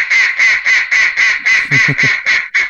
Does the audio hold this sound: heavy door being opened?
no